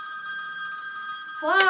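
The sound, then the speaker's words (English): A telephone bell rings in one long, steady, insistent burst, and a person's voice breaks in just as the ring continues at the very end. “and meanwhile, I've got to sit in this bed, suffering, every time that phone rings, imagining everything.”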